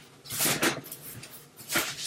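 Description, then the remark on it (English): A door is pushed closed, with a soft rustling swing followed a moment later by a brief, fairly quiet shutting sound; no one speaks. “And I'm going to go ahead and close this door because my wife is going to be coming home in a minute.”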